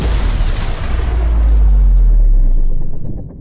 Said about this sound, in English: The report on the first round was at the range where I knew my guy was. And so I tore ass out of the Haji shop, and everybody's running to bunkers, and I passed up the bunker and was running to the range. And the round came in real close.